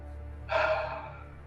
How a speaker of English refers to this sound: He's breathing heavily.